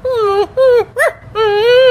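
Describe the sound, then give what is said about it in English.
A person imitates a dog barking, giving three drawn-out, whiny vocal yelps with short pauses between them, fairly loud, with no other talking. “let's hear a Tucker bark”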